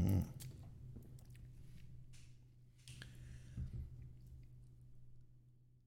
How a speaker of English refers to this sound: Have a sip of sparkling yogurt beverage.